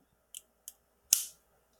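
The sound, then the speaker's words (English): Two faint, brief clicks come first, then a sharp, loud crack as a mechanical pencil snaps when bent, with a short ringing tail. No talking. “It broke because I bent it.”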